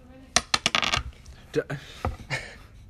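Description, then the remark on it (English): Heavy 3-pound metal dice clatter onto a table in a quick burst of sharp, ringing knocks, followed by a few scattered, softer taps as they settle, with faint talking in the background. “I gave you a stack of paper as a dice mat for a reason, because you were the one who decided to bring 3-pound metal dice.”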